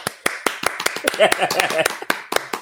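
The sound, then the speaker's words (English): A few hosts clap by hand in a quick, uneven round of applause in place of an applause button, sharp claps repeating for a couple of seconds while voices talk and laugh underneath. “On this show, we usually supposed to have a button where you press and it does a round of applause.”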